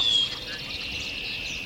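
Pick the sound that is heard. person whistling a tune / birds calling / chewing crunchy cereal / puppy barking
birds calling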